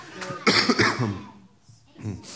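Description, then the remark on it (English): A person coughs several times in quick succession in harsh bursts, followed by a brief pause and one more softer cough. “I really want to take off and go today, but I keep coughing.”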